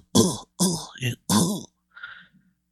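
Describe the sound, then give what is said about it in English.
A voice imitates a harsh coughing fit, with four rough, raspy hacks in quick succession followed by a fainter, wheezy one, fairly loud. “And you hear Smokey. You hear him like cough.”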